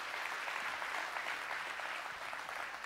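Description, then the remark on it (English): A large crowd claps steadily together, a dense, continuous roar of applause for several seconds without pause, as an audience at a weekend 10:30 morning service applauds to welcome people joining by live stream. “So can we give them a great big hand clap this morning to welcome them? Come on, give it up.”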